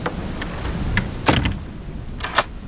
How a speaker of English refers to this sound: Then, as for the rest of you, you can wait out this storm from inside the Keeper's cottage.